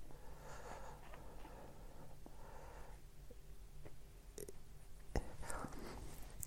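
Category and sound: animal, dog sniffing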